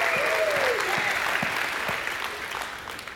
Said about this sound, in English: you ought to shout right there and give God a hand clap and a shout of praise.